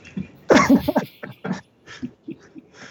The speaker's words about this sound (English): And we're all going to cough in the box before we seal it up.